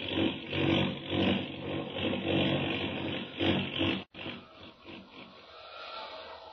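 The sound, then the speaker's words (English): A loud, steady engine roar with a harsh, rushing edge, as a plane goes into a tailspin and plunges down, cuts off abruptly after about four seconds and gives way to a lower, rougher rumble. “Hang on. We're going into a tailspin. We're plunging down.”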